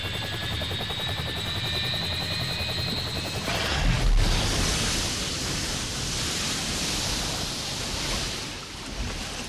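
A droning aircraft engine with a steady rhythmic chop, losing altitude, cuts off into a heavy impact splash as the plane comes down in a wide river, followed by a continuous loud rush of churning water. No voices.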